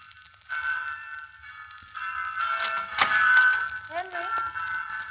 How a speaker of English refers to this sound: Bells have started.